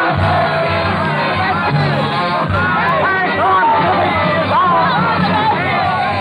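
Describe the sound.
A large angry revolutionary mob, pikes raised, shouts and yells together in the Rue Saint Nicaise, a dense, continuous roar of many raised voices with scattered whoops and hoarse cries rising above the din.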